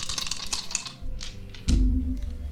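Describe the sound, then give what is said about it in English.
A quick flurry of hard plastic clicks and rattles as several dice are rolled across a table for wisdom saves in a tabletop game, followed by a dull low thump and a faint rustle, with no voices. “That's a lot of rolls I have to make. I have just enough dice out.”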